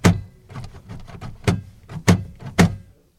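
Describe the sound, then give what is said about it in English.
Taxi doors slam shut four times in quick succession as passengers step out at the Louvre, each a sharp, heavy thunk, with softer rattling and shuffling between the bangs. “We slammed the doors to the taxi before facing the uniquely shaped gallery.”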